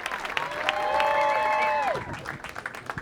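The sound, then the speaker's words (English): A live audience at a Fast Company event with editor-in-chief Bob Safian, Janelle Pitchford and Alicia Keys claps steadily while a few voices let out rising and falling whoops of cheering; the whoops fade out, leaving scattered applause at the end. “You got a crowd here.”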